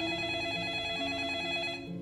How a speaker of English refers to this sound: You start to play it, and it's like somebody's nightmare. And as soon as it's over, your phone rings.